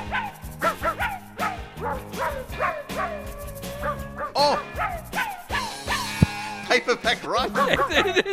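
Pitched dog barks and yips are chopped and sequenced into a bouncy pop melody, each bark landing on a note in quick rhythmic succession over a steady backing beat.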